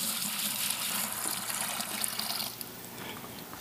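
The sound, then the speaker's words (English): Water pours steadily into a container for about two and a half seconds, a hissing stream that softens and tapers off near the end. No one speaks. “I need to add some water.”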